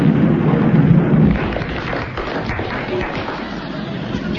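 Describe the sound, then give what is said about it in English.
A loud thunderclap sound effect rolls in as a deep rumbling roar, easing after about a second into a steady, crackling wash of storm noise that continues to the end. “Suddenly there is a tumultuous thunderclap.”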